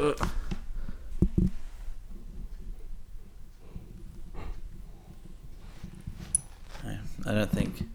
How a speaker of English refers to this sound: dog, or goat, breathes like a human. So I'm just going to... I'll pick this up very carefully.